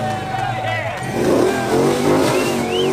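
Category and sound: vehicle, car engine revving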